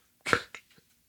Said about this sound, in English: That was weird. I tried to burp, but it like felt like it was going to be joined by something else.